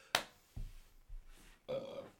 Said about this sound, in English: Excuse me. What was that, a bush? Light. Latte. Well, it was a bush burp.